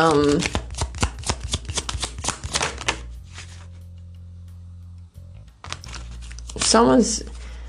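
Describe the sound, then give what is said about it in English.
Tarot cards are riffled and shuffled in quick crisp bursts, pausing under a low steady hum, then resuming briefly with a voice speaking near the end. “All right, any last cards, Spirit?”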